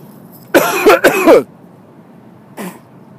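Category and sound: human body sound, coughing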